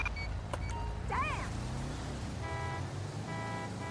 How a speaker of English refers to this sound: Why are they honking? I got them stopping. They're just aggressively honking their horn. They stopped here on eastbound Algonquin.